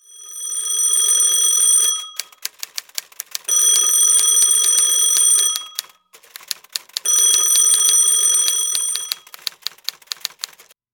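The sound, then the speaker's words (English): A telephone rings in three loud, metallic bursts of about two seconds each, separated by short pauses filled with faint clicking ticks. No voices are heard. “don't you dare interrupt us with another phone call.”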